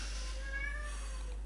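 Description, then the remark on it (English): A cat meows once in a drawn-out, wavering cry, fairly quiet, with no talking over it. “Yeah, you're gonna hear, if you listen to old episodes, you will hear many different cats in the background.”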